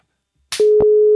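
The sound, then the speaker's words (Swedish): A short click, then the steady ringing tone of an outgoing telephone call starts and holds to the end, clear and fairly loud, with a brief thump partway through and no voices. “Nu ringer han.”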